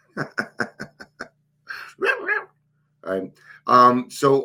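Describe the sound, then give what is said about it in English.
The speaker's pet dog barks in a quick run of about six sharp, evenly spaced barks, then lets out a few longer, louder yelping calls after brief pauses, clear. “There goes my dog.”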